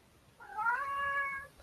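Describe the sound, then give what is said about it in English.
A single drawn-out cat meow, rising in pitch and then holding steady for about a second, heard clearly on its own with no talking over it. “Hello, anti-Semitic cat.”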